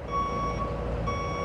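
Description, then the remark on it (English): A truck's reversing alarm beeps in steady tones, pausing briefly and resuming, over a continuous low engine rumble; no one speaks. Trucks loaded with beds, sofas and refrigerators drive down the main street of Planada and unload into dumpsters lining the road. “All day, people drive down the main street in trucks loaded with beds, sofas, refrigerators.”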